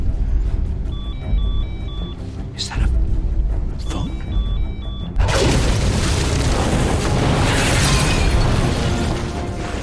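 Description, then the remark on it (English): A bomb explosion, the Joker's bomb sneaked into the Gotham Police headquarters: after a few seconds of repeated electronic beeping tones, a sudden loud blast erupts into a broad, rumbling roar that continues to the end. “And that is how the Joker used a Trojan horse to sneak a bomb into the Gotham Police headquarters.”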